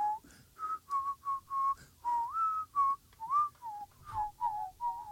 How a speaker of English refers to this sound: Whistles Disney